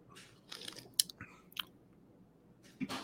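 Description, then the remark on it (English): Quiet mouth sounds of someone sipping an American pale ale brewed with Zeus hops and unfiltered water from the Cache La Poudre River: a few wet slurps and lip smacks spread over a few seconds, with no talking. “I like it. Sips.”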